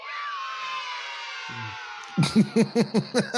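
A crowd cheers and whoops in a sustained roar for about two seconds, then breaks into a quick, rhythmic series of about seven loud pulses, like a chant.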